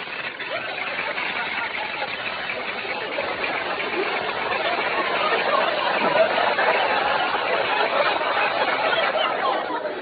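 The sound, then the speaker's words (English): Breakfast cereal in a great big bowl crackles loudly after cream is poured on, a dense, steady hiss of tiny pops and snaps that swells slightly toward the end and carries on without any talking. “They've stopped crackling.”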